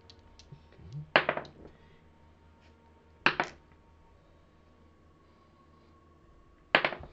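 Three red dice clatter and tumble onto a hard surface in a quick rattling burst, followed by two more short clacks spread apart over a few seconds. The sounds are fairly loud, with no talking.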